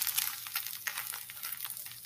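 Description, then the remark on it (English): A steady sizzle with dense popping crackles from an egg frying in a pan, running continuously for about two seconds with no voices. “That's frying an egg.”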